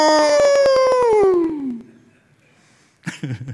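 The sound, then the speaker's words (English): A man's voice imitates a hound's howl: one loud, drawn-out wail sliding steadily down in pitch for nearly two seconds, followed by a short pause and then someone speaking. “He used to always do this message, and when he did, he would call God the hound of heaven, and then he just would let out a, oh!”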